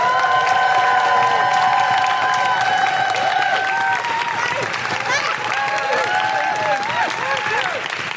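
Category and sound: crowd, audience applause and cheering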